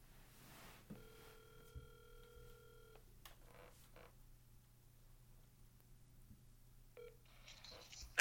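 A telephone line tone sounds steadily for about two seconds, followed by quiet line hiss and a short dialing beep near the end, all over a faint low electrical hum.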